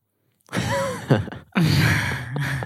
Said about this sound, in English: Sorry, breathing into the mic.